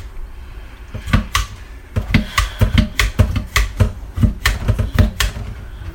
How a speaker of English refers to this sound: I know Jason Castanguay, my co-host for Main Menu, really would like to hear this meat tenderizer in action because he's going to get one. I think Debbie will get one too now that she hears it.